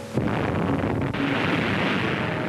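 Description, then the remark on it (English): A nuclear bomb explosion bursts in suddenly and then rolls on as a loud, sustained, rumbling roar that fills the whole clip, with no voices. “A kilogram of uranium, smaller than a golf ball, ignites an explosion equal to 20,000 tons of TNT.”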